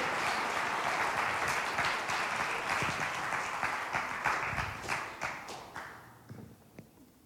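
An audience applauds as guest speaker Dr. Charles Cooper is introduced, with dense, steady clapping that holds strong for several seconds, then thins out into scattered individual claps as it fades away.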